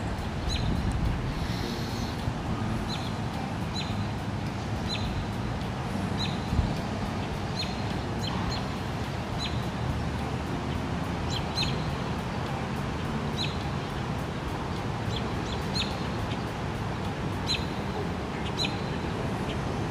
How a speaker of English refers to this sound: And we're just out enjoying a walk. You can hear those birds. There's a bird right there.